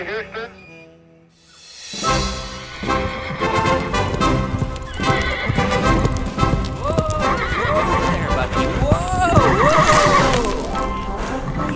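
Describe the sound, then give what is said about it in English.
After a brief quiet moment, hooves start clip-clopping loudly, and a horse named Bucky lets out several high, wavering whinnies over the steady hoofbeats. “Such a good horse, Bucky.”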